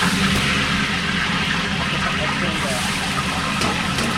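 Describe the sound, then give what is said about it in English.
Hot water pours steadily into a large cooking pot holding heated peanut oil, fish and onions, a continuous rushing, splashing wash of sound that stays loud for the whole stretch. “Heat. Add the fish, more onions, hot water.”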